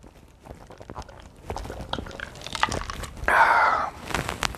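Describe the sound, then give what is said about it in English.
Sipping a Pepsi: a run of small wet clicks and mouth noises, then one louder, sustained slurp near the end before it trails off. “As I'm sipping Pepsi.”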